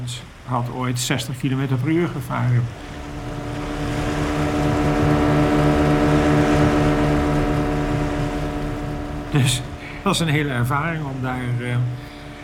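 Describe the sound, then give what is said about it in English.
An 18-ton motorboat with two 350-horsepower engines roars at about 60 kilometers per hour during trials, a loud, steady droning hum with rushing noise that swells and holds for several seconds, with people talking just before and after it. “In November, we started trials, which was, of course, a really big moment, because none of us had ever operated a boat at 60 kilometers per hour before.”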